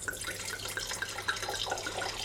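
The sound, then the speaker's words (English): Red wine pours steadily from an old bottle with a bubbling, gurgling trickle, moderately loud, with small glugs recurring throughout and no voices. “So it's pouring nice, not that deep actually.”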